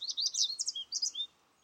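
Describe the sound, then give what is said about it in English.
A bird sings a quick run of high, bright chirps and trills for about a second, then stops; moderately soft, with no voices present. “I think of birds singing.”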